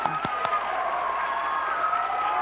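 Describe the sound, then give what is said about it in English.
An audience claps together in worship in a steady, dense wash of applause, with a few sharper hand claps standing out near the start and cheering voices mixed in throughout. “Okay, clap. Yeah, there we go.”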